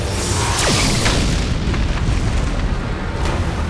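A massive blast of energy rolls into a sustained, roaring rumble as the cavern of Nidavellir collapses around the world serpent's head, loud and dense throughout, heavy in the low end with scattered cracks and debris bursts, and no voices.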